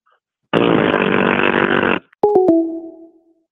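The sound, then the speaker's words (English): A caller makes a loud, steady, buzzy fart noise lasting about a second and a half, followed by three quick sharp clicks with a short ringing tone that fades out. “I mean, I don't even know where to go with that, but it was a fart noise.”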